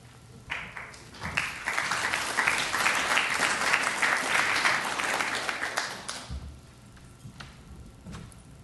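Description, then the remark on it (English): Audience applause for speaker Paul Brest rises quickly into a steady, dense wash of many hands clapping, holding strong for several seconds before tapering off into scattered claps and quiet. “You don't have to clap for me, you have to clap for Paul.”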